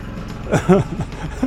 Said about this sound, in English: I'm trying to do a podcast out here. I told him I was doing a podcast, and he's out there running the damn lawnmower around my trailer out here. What is his problem?